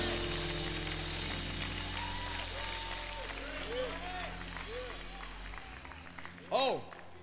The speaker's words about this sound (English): And if you know that he's more than enough, clap your hands and give God praise right now. Come on.